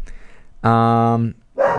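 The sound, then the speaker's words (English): The speaker's dog barks once, a loud, drawn-out, tonal bark lasting over half a second, with a rougher vocal burst starting just after it. “Apparently that rings my dog's bell. Oh my God, it's ringing both of my dog's bells.”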